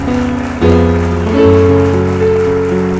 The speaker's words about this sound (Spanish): ¿Alguien se atreve a darle un aplauso al que vive para siempre? ¿Alguien se atreve a darle un aplauso más fuerte al que vive para siempre?